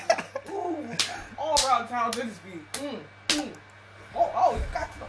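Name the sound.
slap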